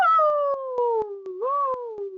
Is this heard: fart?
no